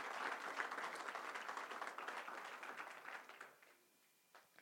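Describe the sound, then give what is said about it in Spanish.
An audience breaks into dense, sustained applause for the Lord, many hands clapping at once in a steady roar that tapers off over the last second, leaving a few scattered claps. “Mi hermano, denle un aplauso fuerte al Señor.”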